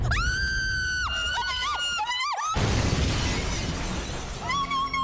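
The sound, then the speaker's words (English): High-pitched screams ring out for a couple of seconds after the lights go out at a Hawaiian party, then a chandelier crashes down onto a guest in a loud burst of shattering glass and clattering debris that rattles on, with another cry at the end. “We hear screams from the group, Giles enters with a torch, and we see Gino has been crushed, or possibly crushed, by a chandelier.”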